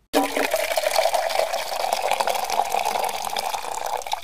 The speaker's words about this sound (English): Cue coffee pour.